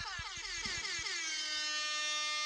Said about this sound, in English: There you go, some old school air horn for that ass.